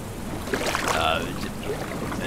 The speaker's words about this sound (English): Cold waves are hitting and splashing all over the boat. There's cold rain pouring down. You hear thunder, you hear lightning. The waves and the wind are tugging the boat back and forth.